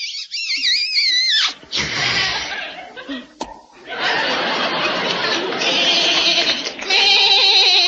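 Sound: goat bleating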